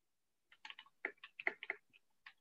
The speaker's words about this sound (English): What are you typing? Googling what a simple dare is.